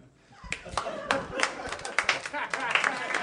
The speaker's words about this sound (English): You guys are clapping wearily like anyone asked you to clap.